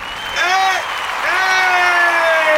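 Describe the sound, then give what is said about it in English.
Steady applause from a crowd, added as a sound effect, with rising and falling cheers and whoops layered over the clapping, sustained at a fairly loud, even level for a few seconds. “I'm gonna add some applause here too.”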